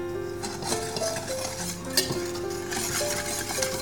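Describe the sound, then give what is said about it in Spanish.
A utensil stirs 4 egg whites and 220 grams of sugar steadily in a metal bowl set over a bain-marie of heated water, making Swiss meringue, with light scraping and occasional clinks against the sides, over a low background hiss. No one speaks. “Ponemos el azúcar y a continuación las claras. Y ahora lo ponemos en el baño María. Lo removemos.”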